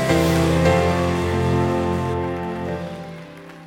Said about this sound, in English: Come on, clap your hands and praise him today.